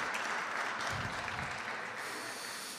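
An audience applauds steadily for about three seconds, a dense, even wash of many hands clapping with no voices over it, holding at a constant moderate level before easing slightly at the end.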